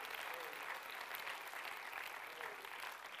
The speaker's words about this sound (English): Somebody clap your hands to the Lord Jesus today.